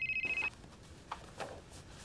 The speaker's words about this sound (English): Because you're expecting a call from your girlfriend in Germany who was supposed to call 4 hours ago. And then, the phone rings.